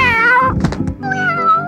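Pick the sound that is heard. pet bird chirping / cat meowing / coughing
cat meowing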